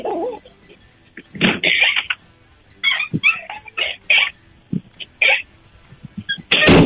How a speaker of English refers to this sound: That was the squeakiest door I've ever heard. Squeak that door. Squeak that door again.